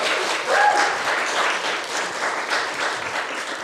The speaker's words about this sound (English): it's really, really great that you could join us for this very special evening with AKO Caine shortlisted writers. Can we give them an enormous round of applause and welcome, first of all?